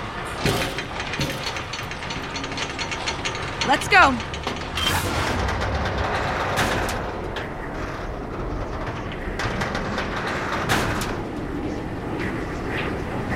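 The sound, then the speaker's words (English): Amusement ride cars rumble and clack along a track with a steady mechanical ratcheting, run to see if they can unload on their own, while people talk briefly over the noise. “Should we run the cars for a while, see if they can unload on their own?”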